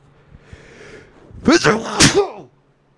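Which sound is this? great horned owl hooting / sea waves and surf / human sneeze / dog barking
human sneeze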